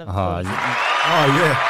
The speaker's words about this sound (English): Come on, round of applause.